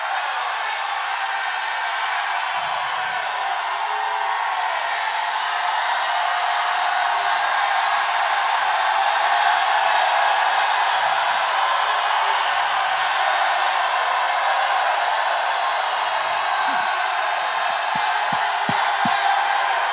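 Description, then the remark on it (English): A large church audience roars and cheers continuously for about twenty seconds, a loud, dense wall of voices with occasional shouts and whoops rising out of the sustained noise. “Let me hear your roar in this place today.”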